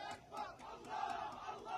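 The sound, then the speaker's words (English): A large crowd in Baghdad, Iraq, heading towards the U.S. Embassy chants "America is the greatest devil" in unison with loud, rhythmic shouting, regular bursts of many voices rising and falling in a steady beat over a continuous roar. “Crowd head towards the U.S. Embassy chanting, America is the greatest devil.”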